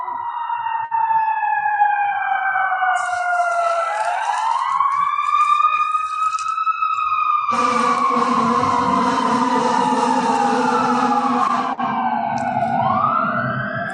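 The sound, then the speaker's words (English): An emergency vehicle siren wails loudly and steadily, its pitch sweeping up and down, with a heavy rumbling engine and road noise joining halfway through as it passes by. “Just to listen to the sirens, just to show up on our Zazen seat, at our job or whatever, just to continue.”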